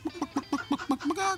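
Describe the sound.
A chicken gives a rapid run of about nine short, evenly spaced clucks, ending in a longer drawn-out squawk. The sound is fairly quiet, with no talking.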